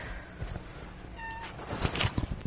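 A cat named Elf gives a brief, fairly high meow, followed by soft shuffling and scratchy rustling noises in a quiet setting with no talking.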